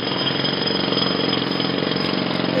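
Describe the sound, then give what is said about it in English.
A jackhammer pounds continuously in rapid, even bursts, loud, with a rough mechanical rattle and no pauses or voices. “The sound of a jackhammer, which is a reference to both parties placing a priority on infrastructure and transportation, but disagreeing over how to pay for it.”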